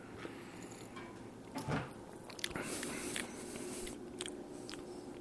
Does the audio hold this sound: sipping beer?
yes